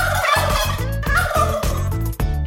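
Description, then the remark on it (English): A turkey gobbles loudly in a rapid, rattling burst of throaty pulses, repeating in quick succession with no one talking over it. “I don't know if there's a discount for turkeys, but I can certainly look into it.”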